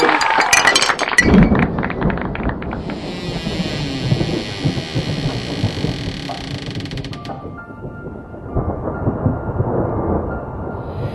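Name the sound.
glasses clinking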